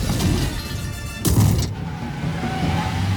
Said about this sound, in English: Kicking a stopped car and flipping it over.